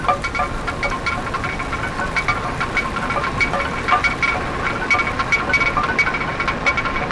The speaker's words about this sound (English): You could see how a water paddle was causing this big bowl with grain in it to spin around and around and around. A wooden arm with a large stone attached to it would jiggle in the bowl and crush the grain.